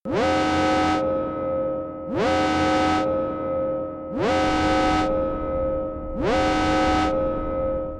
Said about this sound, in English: as you get back to your quarters and stow this strange object, alarms begin going off.